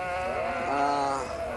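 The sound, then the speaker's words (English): A sheep bleats in one long, wavering call that fills the moment, fairly loud, with no voices over it, as sheep move across at Broadmoor. “Now those sheep have moved across, and I'll have to go to my nine iron.”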